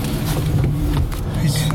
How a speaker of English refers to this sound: what the hell is that noise? Oh, some asshole with this gigantic muffler.